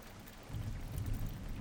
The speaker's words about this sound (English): But she's the one getting rained on.